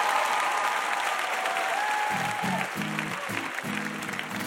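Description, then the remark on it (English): An audience at a quiz show applauds steadily for Wesley Morris, a dense wash of clapping that holds strong throughout, with faint whoops and a few low vocal bursts rising under it toward the end. “How about a huge round of applause for Wesley Morris?”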